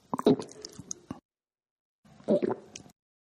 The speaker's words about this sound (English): Hold on, let me drink this water.